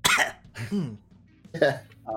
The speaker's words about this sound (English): coughs a little bit.